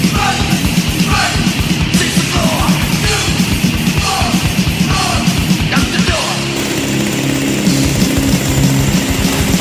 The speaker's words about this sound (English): This is not a drill. This is a drill. Oh, I see. This is the chainsaw.